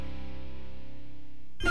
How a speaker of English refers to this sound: Jingle, jingle, jingle, you will hear my sleigh bells ring. That is my choice of bumper music because I want everybody to come together and sing Christmas songs together.